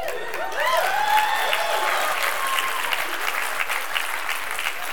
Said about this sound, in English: If it's your first time here, the reason they're clapping is because I have my new false teeth in. And they said they like the way it looks and stuff like that.